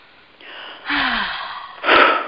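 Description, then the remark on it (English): A deep, audible breath taken as a breathing exercise on waking: a long airy inhale, followed by a strong, breathy exhale, with no talking. “So let's go ahead and take a breath.”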